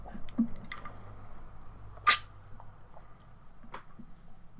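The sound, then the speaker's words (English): Someone drinking water: soft, wet sipping and lip clicks, then one sharper gulp partway through, with more faint swallowing noises after. Otherwise quiet, and no one speaks. “Sorry for all the water pauses. Gotta stay hydrated again.”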